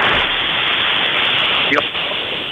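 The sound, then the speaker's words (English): A loud, steady rush of sea waves washing, filling the whole short clip as an unbroken hiss of surf, with a brief higher swish near the end and no voices. “He's been washed away by the sea.”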